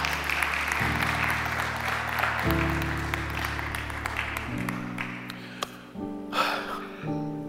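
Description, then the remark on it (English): An audience claps in praise to God in a dense, steady wash of applause, while sustained organ chords shift beneath it; the clapping thins out toward the end as the chords continue. “Come on and give God another hand clap of praise.”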